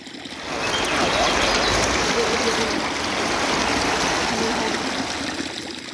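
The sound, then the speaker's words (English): Steady rippling river water flows and trickles continuously, a dense babbling wash that swells in after the first half second and holds at an even level with no voices. “From the ripple sounds of river”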